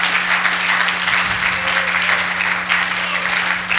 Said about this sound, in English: Put your hands together and give a God a good clap.